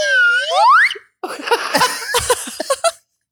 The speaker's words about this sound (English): You have a slide whistle. Why do you have a slide whistle?